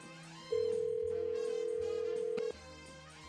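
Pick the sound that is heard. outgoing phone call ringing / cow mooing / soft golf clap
outgoing phone call ringing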